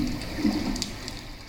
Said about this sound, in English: what we can hear now is movement of the waves and even some sea creatures.